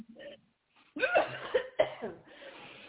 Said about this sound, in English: Cough that thing out. Cough it out.